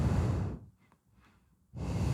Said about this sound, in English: Because also, someone is leaning very closely to their mic while breathing.